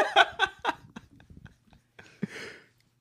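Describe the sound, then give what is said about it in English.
Wet smacking and clicking of someone chewing gum, a few louder chomps at first, then softer irregular mouth clicks and a brief breathy rustle near the end, with no talking. “Are you chewing gum right now in the middle of my podcast?”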